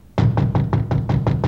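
A quick, steady run of about eight sharp knocks on a door, close and fairly loud, with a low constant hum underneath throughout.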